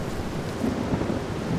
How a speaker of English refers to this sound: The thunder crashed, and out of the storm clouds, Phoebe saw a figure riding a sort of pole arrive low in the air.